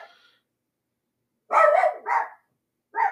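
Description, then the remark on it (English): Dogs bark in a few sharp bursts as an Amazon delivery driver stops by: a faint yip, then a loud double bark after a pause, and one more bark at the end, with no talking. “I apologize, you know how it is with the dogs and the mail, but I'm not going to stop because I'm doing pretty well.”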